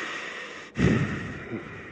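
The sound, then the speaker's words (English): A voice imitates heavy panting: a sharp, forceful breath followed a moment later by a softer second one, breathy over a steady background hiss. “And I'm over here panting, breathing hard.”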